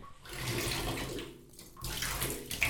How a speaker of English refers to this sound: All right, now pouring in some bubble bath.